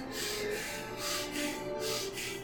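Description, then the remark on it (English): A voice imitates heavy, ragged breathing through the nose: about four rough, hissing breaths in quick, steady rhythm, each swelling and fading, with no words spoken. “He's breathing like hard through his nose, like.”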